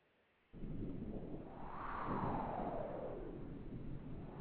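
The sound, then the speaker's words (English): A deep, sustained roll of thunder from a torrential thunderstorm in the low-lying coastal city of Mobile, Alabama, with hurricane-force winds, starts abruptly and rumbles on steadily and loudly for several seconds, heavy in the low end, with no voices. “I'm standing in the low-lying coastal city of Mobile, Alabama, getting pelted by torrential thunderstorms.”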